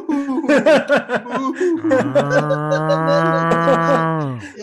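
Choppy, laughter-like bursts give way to one long, low, drawn-out moo that holds steady for nearly three seconds before fading, loud.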